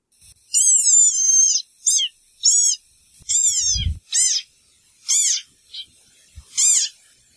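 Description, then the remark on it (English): A desert rain frog squeaks about nine times, each call a shrill, wavering, high-pitched squeal, some long and some clipped short, spaced irregularly, with a soft low bump partway through and no talking. “Very tiny, squeaky little animalcule. It is. It is. That's the desert rain frog.”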